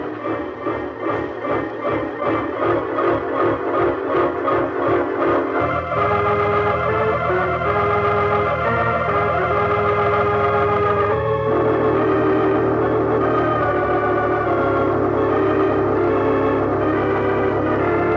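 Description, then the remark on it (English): A train pulls into a station: about five seconds of steady rhythmic chugging, then sustained, layered ringing tones as it slows and halts, with loud, continuous noise throughout and no voices. “Here comes the train.”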